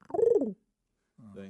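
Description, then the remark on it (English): A person's voice mimics a cat with a short, falling meow-like cry, then after a brief pause makes a low, steady cooing sound like a pigeon. Both are fairly loud. “I went from a cat to a pigeon just do like that”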